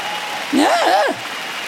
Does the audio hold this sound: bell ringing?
no